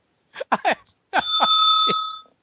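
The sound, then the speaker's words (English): A bell rings: a few quick metallic dings, then one longer bright ring that hangs for about a second before fading out. “Why are you ringing a bell?”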